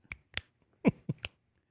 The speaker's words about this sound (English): There's probably some people who are really good at snapping.